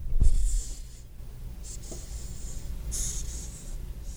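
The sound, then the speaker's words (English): Hissing cockroach pushing air out through its spiracles, its lung openings, in several breathy, airy hisses, with a low rumble underneath and no talking. “Little cockroach buddy. Boy, it really is hissing.”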